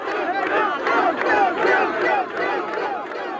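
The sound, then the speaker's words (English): A dense crowd cheers and yells together at David Duke's election night party after his narrow win, many voices overlapping in a loud, sustained roar that swells and dips slightly over a few seconds. “That's the crowd at Duke's election night party, recorded by Plater Robinson.”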